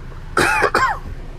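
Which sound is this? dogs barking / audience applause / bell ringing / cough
cough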